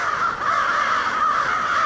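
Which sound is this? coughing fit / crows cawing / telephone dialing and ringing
crows cawing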